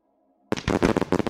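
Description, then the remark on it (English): A rapid series of sharp, crackling bursts like small explosions of light erupts suddenly after a brief near-silence, loud, popping in quick irregular succession. “Suddenly, a series of minor explosions of light surrounded the Lalchadel.”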